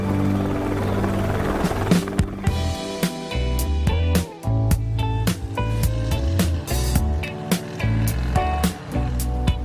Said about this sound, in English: Today, I'm flying on an Airbus H125 helicopter, and you're on a Qantas Boeing 787 Dreamliner.